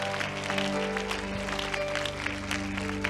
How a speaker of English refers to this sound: Come on, clap your hands.